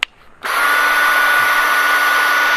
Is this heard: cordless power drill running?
yes